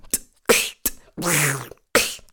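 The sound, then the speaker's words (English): A voice imitates a cat, with a drawn-out meow that slides downward in pitch, set among several short, breathy vocal bursts and clicks, fairly loud, during a rapid-fire game of imitating the sounds of animals and objects. “Let's go for cat.”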